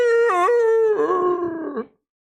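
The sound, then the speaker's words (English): A person mimics a howl: one long, loud wail that swoops up briefly, holds a wavering pitch for nearly two seconds, then cuts off into silence. “You're howling at the moon.”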